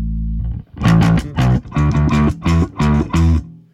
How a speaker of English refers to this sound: So let's just use amp distortion now.